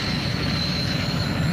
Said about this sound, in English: In her Ladybird jet, which only appeared, I think, a couple of times.